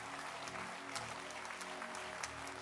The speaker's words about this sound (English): Oh, keep clapping for them. They are great generals.